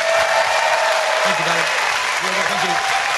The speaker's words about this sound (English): Ladies and gentlemen, please give a massive round of applause for Brady. Thank you, darling.